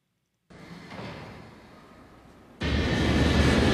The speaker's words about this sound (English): Perhaps on this plane, which is flying on the screen right this very minute.